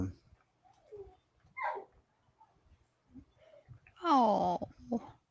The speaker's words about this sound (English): my dog is barking too.